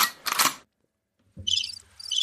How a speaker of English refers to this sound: He gets the crickets today.